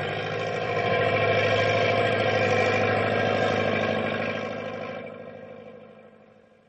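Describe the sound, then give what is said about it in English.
A truck engine labors steadily in low gear through rough going and snow drifts, a deep rumbling drone with harmonic whine that holds loud, then gradually fades away toward the end. No voices. “Boy, going's really getting rough, even for Big Brute. Nothing to worry about, pal. I still have two lower gears to shift into.”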